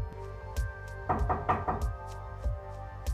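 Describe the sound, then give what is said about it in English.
Someone knocks on a hotel room door at 2 a.m.: a few separate thuds, then a quick burst of four firm knocks, then more spaced single knocks over a low steady hum. No one speaks. “Someone's knocking at the door.”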